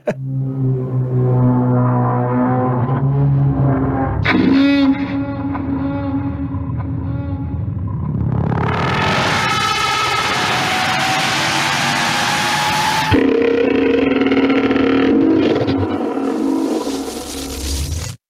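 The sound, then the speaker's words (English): A loud, eerie Thargoid alien drone starts low with layered tonal hums, then swells into a bright, harmonic-rich roar like a whale-like trumpet blast, before dropping back to a deep resonant tone. “all that's left is for me to play my uncomfortably loud Thargoid sound”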